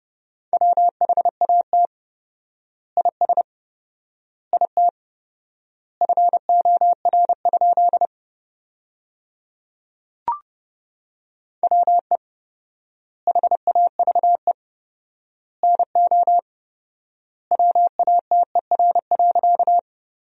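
Morse code sent at 30 words per minute with 4x word spacing, sending sentences made from the top 100 words: a steady mid-pitched beep keyed into quick clusters of dots and dashes, each word separated by a long pause, with no voices.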